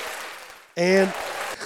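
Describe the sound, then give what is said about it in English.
A canned burst of applause played from an applause button: steady crowd clapping hiss, cut through midway by a brief, loud tonal whoop or cheer before the clapping carries on to the end. “Oh, applause button. There it is.”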